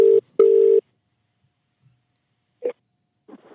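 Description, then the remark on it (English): A phone call to a supporter rings out with one double burst of ringback tone, brr-brr, fairly loud and clear, then a pause, a small click, and a voice faintly starting to answer. “So we'll see if we can get him on the phone. I don't know.”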